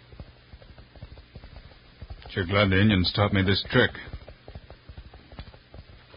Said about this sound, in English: Yep, there he is. My ear close to the ground, I can hear his horse running. He's closer, and I'm gaining.